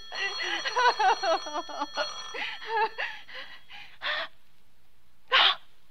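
A bell rings in a rapid, warbling flurry of high metallic tones, then falls silent except for two short, bright bursts of ringing after a pause.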